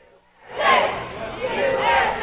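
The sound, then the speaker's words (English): A crowd with banners and balloons breaks into loud cheering and shouting after a quiet start, welcoming two brothers home from the Middle East; many voices blend into a sustained, excited roar that continues to the end. “Banners, balloons, and a big crowd for two brothers home from the Middle East.”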